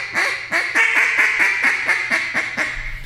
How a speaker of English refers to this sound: Well, I'm calling at these other ducks right here. And and that duck will sound off.